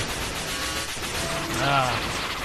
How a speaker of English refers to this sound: Man, that sounds like... Rapid fire.